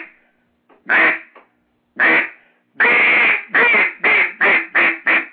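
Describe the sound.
Loud quacks blown on a duck call: two separate single quacks, then a quick run of about six quacks in a steady rhythm, with no talking.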